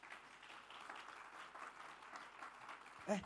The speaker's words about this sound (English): A hand clap will be better.